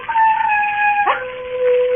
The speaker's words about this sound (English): There are wild dogs on the moor. Sometimes they bay and howl.